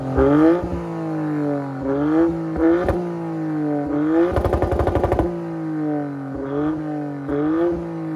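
A modified three-cylinder car with a loud aftermarket Remus exhaust revs up and settles several times, loud, with a rapid stuttering rev-limiter burst in the middle. No one speaks.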